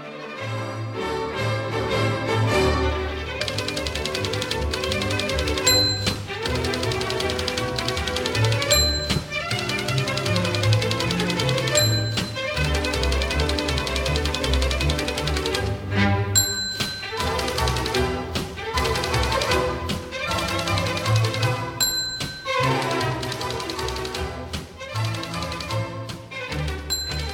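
A lively orchestral tune plays steadily while rapid typewriter clacks tap along in rhythm, punctuated every few seconds by a bright carriage-return bell ding.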